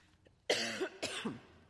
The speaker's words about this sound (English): I'm going to go over here because I don't want to keep coughing.